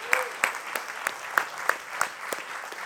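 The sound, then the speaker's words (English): Steady, rhythmic clapping, about three claps per second, like a few people clapping in time as a clap offering of praise rather than a roaring ovation, moderately loud with no talking. “And that should be a clap offering on that because he's giving us that.”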